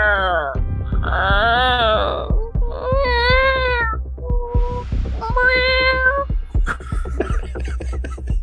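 A series of drawn-out, wavering meows, about six in a row, likely a person imitating a cat, in a studio, over a steady low hum.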